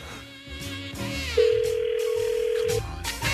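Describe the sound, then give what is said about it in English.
An outgoing phone call rings: a single steady electronic ringback tone holds for about a second and a half, with faint background sound before and after it. “Okay, it's ringing.”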